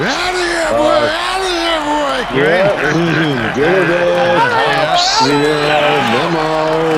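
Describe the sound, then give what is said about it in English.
A large baseball stadium crowd cheering and shouting loudly and continuously during an extended delay, many overlapping voices rising and falling in pitch, with whoops and yells standing out from the steady roar. “And then, there's an extended delay, but everybody's cheering.”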